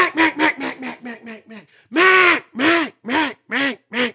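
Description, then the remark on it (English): A mallard hen duck call: a quick run of about seven raspy quacks fading in volume, then four louder, drawn-out quacks, clear with no talking. “He would just stand on that first note, stand on Mac, Mac, Mac, Mac, Mac, Mac, Mac.”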